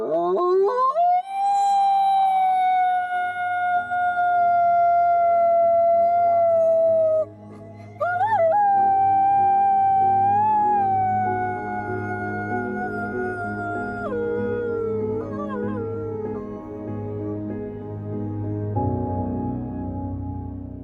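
Wolves howl in long, sustained, wavering notes: one loud howl rises and holds for several seconds, then after a brief pause another starts, with other voices layered over a low background rumble.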